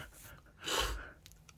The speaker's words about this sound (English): I'm going to cut out all these sniffles. Okay. It's a sniffly night.